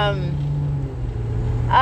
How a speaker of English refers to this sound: coming to you from the car once again.